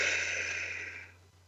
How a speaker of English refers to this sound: Take a big breath through your nose, filling your belly, and out through your mouth like through a straw. One more big breath.